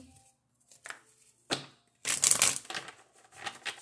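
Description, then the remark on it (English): A deck of love cards is shuffled for a reading: a few soft flicks and one sharp snap, then a dense, crisp riffle lasting about half a second, trailing into lighter papery rustling. “It's the shuffle for me.”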